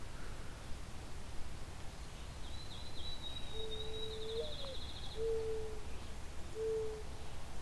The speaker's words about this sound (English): They can project a fair bit. The mourning dove. And that can sometimes lead you to think you're hearing an owl in the distance.